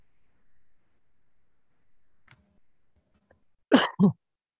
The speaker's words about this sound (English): Bless you.